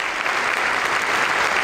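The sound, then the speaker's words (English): Steady, dense applause and cheers from the crowd of the Illinois legislature, a continuous wash of clapping at even loudness with no voices standing out. “Wow, a roaring the cheers of the crowd of the Illinois legislature.”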